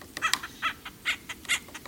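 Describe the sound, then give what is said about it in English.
A series of harsh, raucous acorn woodpecker calls, about five quick bursts in an uneven rhythm, moderately loud, with no talking. “One favorite location for the walks was a home of an acorn woodpecker, a tree bored with many holes filled with acorns.”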